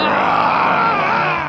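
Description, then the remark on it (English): A voice imitates a zombie with a loud, garbled scream, a rough, strained groan held steadily for about a second and a half with no words. “It's just a picture of the main character screaming garbled in a zombie outfit into the mic.”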